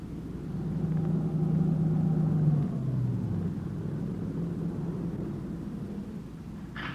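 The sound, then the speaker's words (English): A dark-colored late-model sedan's engine rumbles, its steady drone dropping in pitch as it swings off a dirt road and comes to a stop near a shack, then idles low and even, with no voices. “It swung off the dirt road and pulled to a stop near the shack.”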